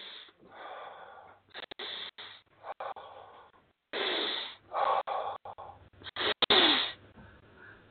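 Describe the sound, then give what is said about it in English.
A person doing power breathing: four sharp, forceful breaths drawn in through the nose, fairly loud, coming in quick rhythmic bursts with brief pauses between them and no talking. “Tony Robbins, power breathing. What is that? That's four breaths into the nose.”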